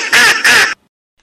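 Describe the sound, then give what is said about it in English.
Two loud, raspy duck quacks in quick succession, clear, followed by silence. “Duck!”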